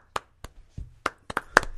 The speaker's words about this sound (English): You can clap for each other, that's fine.